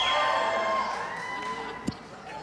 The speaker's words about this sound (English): Y'all ain't right. That just illustrates my point. You're cheering for a team that is already lost.